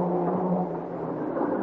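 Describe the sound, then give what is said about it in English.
A car engine runs with a steady, low droning rumble, holding a fairly even loudness throughout the short moment with no voices. The car is being driven fast through the small village of Puerto Montego. “I gun through the town, then ditch my car at the far end behind one of the buildings.”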